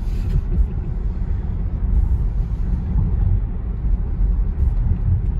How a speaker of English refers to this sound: So I am controlling the car entirely right now. No auto steer, no cruise control, no lane assist, nothing. They all can do full autonomous down here. They've modified all of these cars to do so.